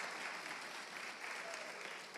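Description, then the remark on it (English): Audience clapping fills the whole stretch, a dense, steady patter of many hands with no pauses, bright and crisp, at a fairly even loudness throughout, as a pastor is invited up to the front. “If you're gonna clap, let's commit to it.”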